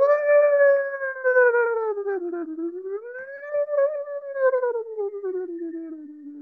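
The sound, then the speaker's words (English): A long victory screech rings out on its own, a sustained howl-like wail that sags, rises and falls again in pitch for over six seconds. “Victory screech.”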